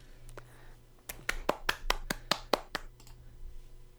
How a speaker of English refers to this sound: They warrant that round of applause.